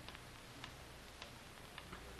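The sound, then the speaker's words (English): A time bomb ticks steadily, with soft, evenly spaced clicks about twice a second, sometimes doubled, sounding faint over a constant low hiss and rumble, with no voices. “Listen to that ticking. That's fate counting what may be the last minute of our lives.”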